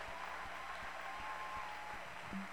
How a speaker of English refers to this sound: Can you clap your hands for Jesus? Keep clapping. Don't stop clapping.